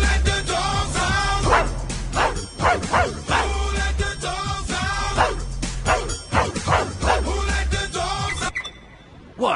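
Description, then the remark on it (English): A pug barks and yips repeatedly in a rough rhythm over loud, steady pop music, the barks prominent, sounding as if it's singing along to a well-known pop song. “He's just barking to a well-known pop song.”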